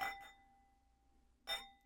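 Thin drinking glasses clink together in a toast during a tasting: two quick taps, then a third clink after a short pause, each leaving a faint bell-like ring that lingers. Quiet, with no voices.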